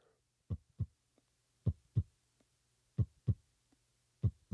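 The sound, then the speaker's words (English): A voice imitates a heartbeat as a sound effect made with the throat: throaty thumps in steady lub-dub pairs, four double beats with soft ticks between them, low and punchy over a faint steady hum, with no talking. “Did that sound like a heart? I did that with my throat.”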